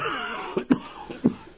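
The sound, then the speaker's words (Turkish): An old man in poor health coughs in a few short, rough bursts, with a couple of stronger hacks standing out over a faint hiss, and nobody speaks. “Zavallı öksürüp duruyor. Sağlığı pek iyi değil.”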